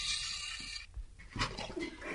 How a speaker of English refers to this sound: Oh, we've just managed to spill water, so again, it's good we brought our own carpet with us.